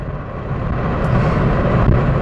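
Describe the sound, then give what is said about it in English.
A steady low rumble of road and engine noise heard from inside a car, like a moving car, with a faint hiss above it and no voices. “Why am I sitting here in my car right now doing this podcast after work?”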